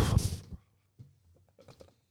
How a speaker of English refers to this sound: Everything okay? Yep. Little cinnamon burp? Little cinnamon burp.